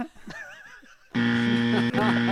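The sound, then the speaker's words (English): An electric buzzer sounds after a second of quiet murmuring, a loud, steady, harsh drone that holds for over a second, breaks off briefly, then buzzes again. “I'm just buzzing everyone.”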